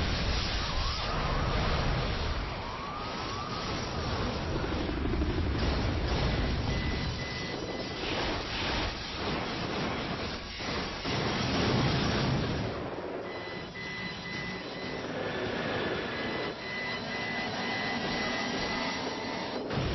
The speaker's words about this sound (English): I mean, that's what Hollywood depicted a nuclear explosion would be like in 2002. And I guarantee you that nuke was probably only something like 1 megaton.